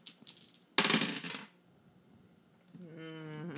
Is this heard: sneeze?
no